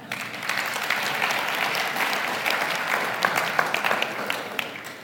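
Steady applause from an audience fills the whole five seconds, a dense wash of many hands clapping at an even level, with a few sharper individual claps standing out near the end.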